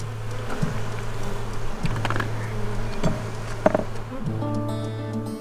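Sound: honeybees buzzing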